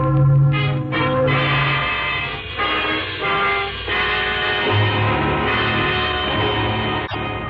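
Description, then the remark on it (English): Loud church wedding bells peal continuously on a Sunday morning, their overlapping ringing tones blending into a dense, resonant wash that carries on without pause and with no voices. “Those are wedding bells, darling.”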